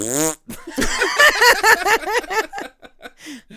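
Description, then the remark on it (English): A short, buzzy fart noise opens, then a brief pause and a burst of loud, rhythmic laughter that trails off into scattered chuckles. “You just rip one right there while everybody's silent.”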